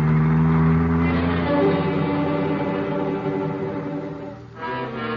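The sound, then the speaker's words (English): A car engine hums steadily, its harmonic drone shifting pitch slightly as it drives, with a brief dip and rise near the end; the car is trailing a man for almost 3 hours. “For almost 3 hours, we trailed Crowder by car, never getting too near him, just pinpointing him.”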